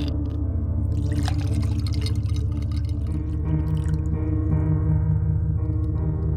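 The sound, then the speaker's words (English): Whiskey pours into a glass in a short, gurgling stream, splashing most audibly in the first few seconds, over a steady low droning hum that continues throughout. “I poured another whiskey.”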